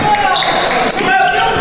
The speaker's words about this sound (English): Slaps the ball, trying to get it in